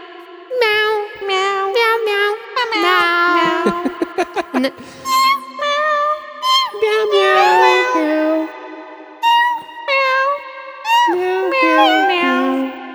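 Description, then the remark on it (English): A steady string of cat meows pitched into a slow, sing-song Christmas melody over soft plucked guitar, loud, with a quick stuttering burst of short meows partway through. “And it's like, you know, there's meow, a guitar. Meow, meow, meow, meow.”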